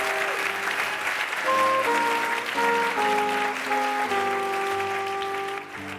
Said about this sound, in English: All right, let's give a round of applause getting through the lightning round.